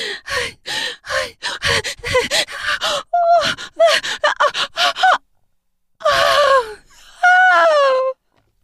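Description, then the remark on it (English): A woman gasps for air during orgasm in a quick, breathless series of sharp inhales, then after a brief pause lets out two longer, drawn-out voiced gasps. “I suck her harder as she gasps for air as her body travels the course of the orgasm.”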